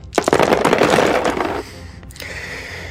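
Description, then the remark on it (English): A rapid, dense clatter of twelve dice tumbling and rattling together for over a second, fairly loud, then trailing off into a few scattered clicks and quiet. “Okay, here's this cascade of dice.”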